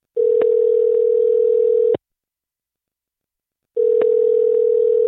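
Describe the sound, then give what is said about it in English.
A phone's ringback tone on a recorded phone call purrs for about two seconds, goes silent, then starts its next ring, a steady, clear electronic tone in a regular on-off pattern with no voices. “I want to play the phone call that happened and then we can react to it after.”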